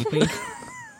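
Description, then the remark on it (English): A single drawn-out cat meow, starting fuller and trailing off into a thin, wavering tone that slowly fades over about a second. “Take that cat in there.”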